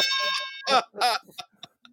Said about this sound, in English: I just figured I'd throw out the bell on that one. You guys can fight it out.